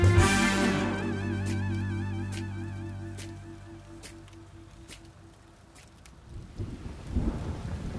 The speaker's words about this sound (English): You're running in the rain.